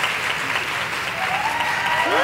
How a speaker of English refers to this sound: Where is everyone? Oh, we got it. We're standing. Give them a round of applause harder, please. It takes a lot of courage to come up here.